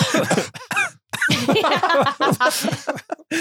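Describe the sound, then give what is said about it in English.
A person mimics coughing with their voice, a run of short, rough, voiced bursts broken by brief pauses, fairly loud and heard on its own. “And then coughing in the background.”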